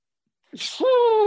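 A single loud sneeze: a quick breathy intake bursts into a drawn-out, strongly voiced exhale that holds steady until the end.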